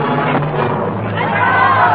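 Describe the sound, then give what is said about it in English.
A large crowd counts aloud together in a flat, monotonous rhythm as each noble's head falls from the guillotine during the Reign of Terror, a dense and fairly loud wall of many voices that stays steady throughout. “The dripping blade rises and falls, and the crowd counts in monotonous rhythm as each noble head rolls to the ground.”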